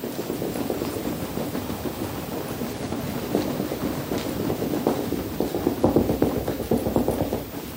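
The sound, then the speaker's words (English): A group stamps their feet on a floor together during a breathing and movement exercise, a dense, continuous rumble of overlapping thuds that grows a little louder and more uneven toward the end, with no voices. “And stamping with your feet.”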